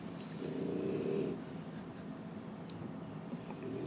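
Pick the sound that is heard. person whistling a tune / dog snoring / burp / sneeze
dog snoring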